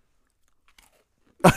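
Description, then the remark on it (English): A crisp crunch of someone biting into an Oreo cookie, arriving suddenly near the end after a stretch of near silence. “I fucking heard it. You can hear the crunch.”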